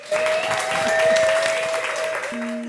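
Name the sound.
audience applause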